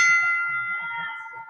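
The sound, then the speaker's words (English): A single strike of a wrestling ring bell rings out clearly and loud, its metallic tone sustaining and slowly fading, with faint low crowd murmur underneath. “We gotta ring the bell or something, man.”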